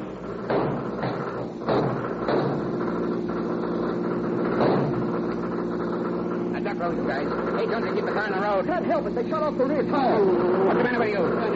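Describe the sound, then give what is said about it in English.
A convicts' getaway car roars west of Petaluma, chased by the law: a steady engine drone throughout, loud, with a continuous mechanical hum and some higher whining tones toward the end, while voices talk over it. “14 miles they roar west of Petaluma.”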